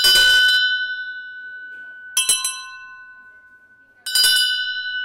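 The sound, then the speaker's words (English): A small metal bell rings three times at an even, unhurried pace, each bright, clear strike leaving a sustained shimmering tone that lingers until the next ring. It is loud. “If I ring this, you'll hear the sound. And then we'll compare that to a brass tuning fork. I mean, brass bell, sorry.”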